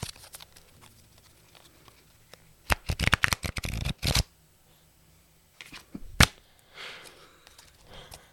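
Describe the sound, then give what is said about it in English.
Tarot cards being shuffled: a quick burst of crisp, rapid riffling snaps lasting over a second, then a single sharp flick and a softer rustle, with no one talking. “Do you need some card ASMR?”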